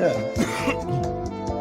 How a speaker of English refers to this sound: Yeah. Give us a chance to cough.